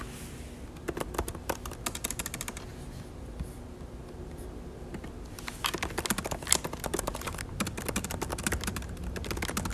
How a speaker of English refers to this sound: I just got home and I have a 10-page paper due tomorrow, so I'm gonna be finishing that. And I think that's all I'm going to be doing for today. That's pretty much my day, so enjoy the sound of me typing.